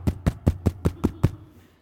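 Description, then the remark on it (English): Seven firm knocks on a wooden door in a quick, even rhythm, fairly loud, with a short quiet tail after the last one and no voices. “You get a knock on your door.”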